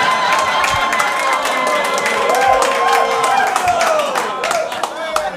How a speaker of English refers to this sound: A lot of applause from this table. Oh, it's my family.